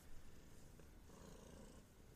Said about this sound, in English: Sorry, she's just purring really loud.